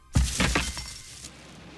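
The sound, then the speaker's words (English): A dumpster is knocked over: a loud metallic crash hits suddenly, followed by a few rattling, clattering knocks that fade out over about a second. No voices are heard. “To that point, he knocked over a dumpster.”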